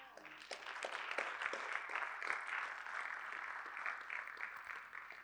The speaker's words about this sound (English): They are not clapping. Oh, now they are clapping.